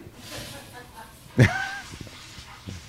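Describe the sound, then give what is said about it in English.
An 11-year-old female Bichon Poodle Maltese dog named Gracie lets out one brief, high whimpering yelp partway through, fairly loud against quiet background noise and faint, indistinct voices. “That's an 11-year-old dog.”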